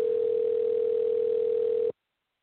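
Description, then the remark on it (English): A single steady electronic ringback tone from an outgoing phone call, humming evenly for about two seconds before cutting off into silence. Moderately loud and heard alone, with no talking. “I may leave him a voicemail to call back.”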